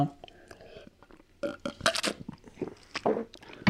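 Someone sips water, with a run of short, wet mouth and swallowing noises, soft clicks and gulps that swell in loudness near the middle and end, without clear speech.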